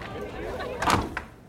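A door thuds shut, followed a moment later by a short, sharp click like a lock turning, over a low background murmur.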